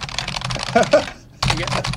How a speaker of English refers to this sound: All right. It's really simple. All I do is I hit this button here. There you go. There you go. Bit of typing.